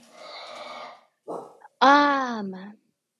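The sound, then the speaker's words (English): A dog growls low and rough for about a second, then lets out a short bark followed by a louder, drawn-out bark that slides down in pitch. “They're bad dogs, I tell you what.”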